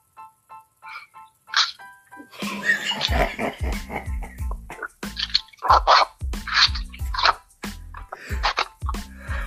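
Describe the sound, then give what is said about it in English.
Dogs bark in a loud, repeated string of sharp yelps, overlapping, after a brief tinkly jingle-like melody at the start. No one speaks. “Sister Dana, is that your dogs?”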